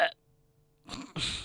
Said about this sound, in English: And on that burp note,